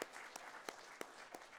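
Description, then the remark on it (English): A crowd applauds steadily, a dense wash of clapping with a few sharper, louder claps standing out at a regular beat. No one speaks. “Let's give God a round of applause for that.”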